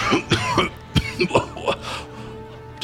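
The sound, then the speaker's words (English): A person acts out a fit of harsh, throaty coughing, coughing up boogers, sand and grit, about five rough hacking bursts in quick succession with gravelly, gagging clearing sounds, loud. “So as it kind of just coughs out with a combination of boogers and sand and grit, I'll stand up.”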